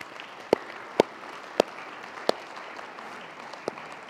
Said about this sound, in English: That's the forced clap.